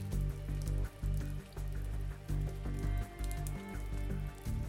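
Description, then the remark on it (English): Steady rain falls in Lulu, hissing and pattering continuously at a moderate level, over a low droning hum that briefly dips and returns every second or so. No voices. “The rain for the most part is vague but constant, and I will have to grow accustomed to being rain-sodden.”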